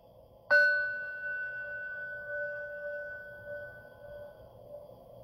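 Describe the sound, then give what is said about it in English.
A single bell is struck once to open a guided mindfulness exercise and left to ring, its clear, steady tone slowly fading over several seconds against a quiet background with no talking. “And then I ask people to gently just close their eyes or look down if you're comfortable and listen to the sound of the bell.”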